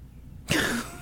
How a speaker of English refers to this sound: I swear to you, I have to sneeze. I swear I do. I thought you were, like, trying to, you know. I'm dramatic pause and then, like, a segue. No. Just the dramatic pause was for the sneeze.